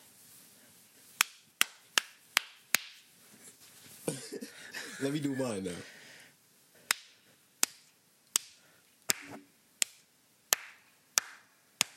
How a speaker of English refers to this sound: All right, you want to get to clapping? Yeah.